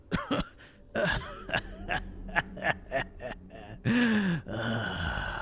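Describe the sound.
A man's voice acts out a fit of coughing for a character just barely regaining consciousness, a string of rough hacks and sputters broken by strained gasps and a drawn-out groaning breath near the end.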